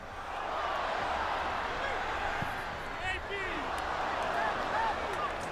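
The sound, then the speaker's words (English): Steady roar of a football match crowd on a Match of the Day broadcast with no commentary, a dense blend of many voices holding an even level, with a few brief whistles and calls rising out of the murmur. “Almost the sound that you would hear if you were in the crowd.”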